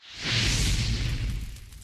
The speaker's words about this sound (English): So let's light this campfire and get into our special guest.